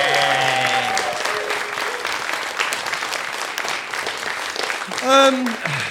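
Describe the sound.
Steady audience applause for the winner of a film quiz, a dense crackle of clapping hands lasting several seconds, with a voice briefly heard at the start and a rising cheer or whoop near the end.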